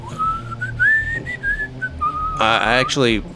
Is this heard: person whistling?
yes